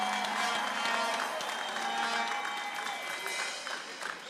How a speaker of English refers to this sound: Come on, he can give Jesus Christ a clap offering of praise.